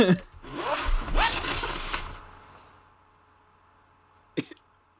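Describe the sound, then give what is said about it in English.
A clothing zipper is pulled in quick rasping bursts over the first couple of seconds, then the sound fades into near silence, broken by one short sharp knock near the end. “Somebody was zipping during that time”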